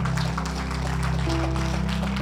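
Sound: audience applause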